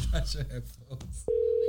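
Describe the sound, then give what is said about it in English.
After a second of muffled chatter, a phone line tone cuts in with a click and holds steady to the end: a loud, clear, continuous electronic hum of an outgoing call to a celebrity. “we going to call a celebrity on the podcast”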